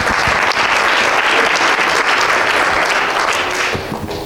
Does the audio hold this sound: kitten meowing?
no